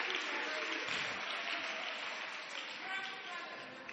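An audience claps steadily for several seconds, a dense, even wash of many hands at a fairly loud, constant level with no talking over it.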